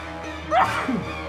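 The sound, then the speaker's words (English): A single sharp sneeze, a quick rising burst that drops off into a short breathy tail, heard over faint, steady background film-score music. “Sneezing through the score.”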